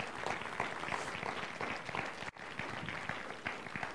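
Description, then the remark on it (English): A crowd applauds steadily after a prayer, a dense, loud wash of many hands clapping, with a brief dip partway through before the clapping resumes at full strength. “Let's give her another big round of applause.”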